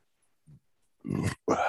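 A short low grunt, then a loud, drawn-out belch and a second burp right after, without talking.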